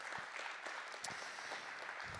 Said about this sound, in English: You know him, so give him a round of applause and his family.